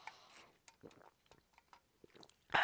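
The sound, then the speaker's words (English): Someone takes a sip of a drink: soft slurping and a few small wet gulps and mouth clicks in near silence, ending with a louder, brief clatter. “Excuse me just a moment, taking a sip.”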